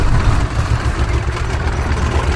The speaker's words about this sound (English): Sounds like a tractor.